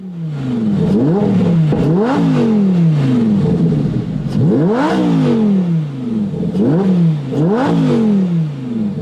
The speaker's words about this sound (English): Well, I know that that was a, it sounded like a 10-cylinder engine to me, just listening to it. It sounded like it was either a Gallardo or a Huracan.